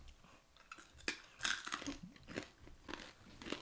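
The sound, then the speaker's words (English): Loud crunching of crisp corn chips being bitten and chewed, a series of sharp brittle cracks coming every half second or so, with no talking. “These are very crunchy. If you have brittle teeth, it's like eating other teeth.”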